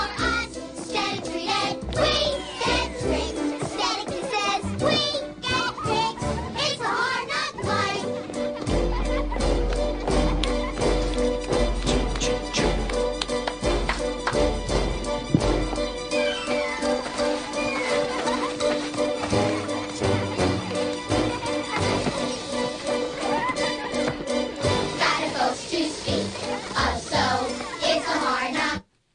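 A group of children sings a lively musical theatre number with instrumental backing, loud and continuous throughout, with a heavy bass swell partway through.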